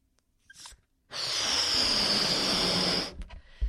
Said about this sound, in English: So we're going to blow up this balloon as a representation of our worry about our friends.